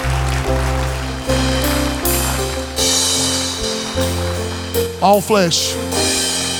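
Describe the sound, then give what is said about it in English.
An audience breaks into sustained applause as a hand of praise to God, a dense wash of clapping that fills the room, with a few voices cheering and calling out over it near the end. “Can we give God the biggest hand of praise tonight?”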